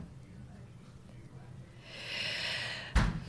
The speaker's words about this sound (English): Please, I'm just breathing. Don't even go there. Just breathing. Don't even go there. I just realised I'd been so tense I hadn't been breathing properly.